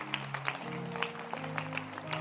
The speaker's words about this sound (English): Clap your hands for Bishop. Clap your hands.